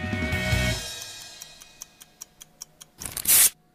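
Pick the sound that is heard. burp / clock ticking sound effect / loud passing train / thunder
clock ticking sound effect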